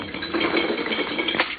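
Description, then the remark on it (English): A boat anchor is let down with a steady metallic rattle of chain running out, a dense clinking and ratcheting that ends with a sharper clank. “I'll let down the hook.”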